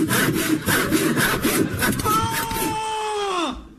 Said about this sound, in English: Yes, I'm in position, and the saw looks pretty sharp, and here it goes, sawing through the box now.